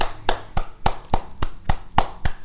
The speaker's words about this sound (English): Thank you, Masons. That's the Masons. Clap it up for the Masons.